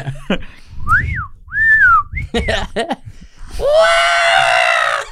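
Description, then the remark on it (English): A Star Wars R2 toy robot gives a string of rising and falling electronic whistles and chirps, then lets out a loud, sustained, buzzy screech that holds to the end, a scream it makes when it falls over. “I think he has a special speaker for his screams.”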